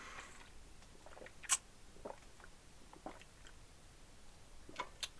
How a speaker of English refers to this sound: That was good water. I needed that.